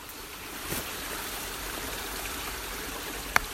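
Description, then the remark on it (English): Steady, continuous rush of creek water flowing in light rain, a broad hiss with soft burbling, plus one brief sharp click near the end; no voices. “I'm by the creek.”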